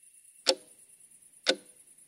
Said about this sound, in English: That's the clock in my bedroom, and right now it's telling me it's 2:37 a.m.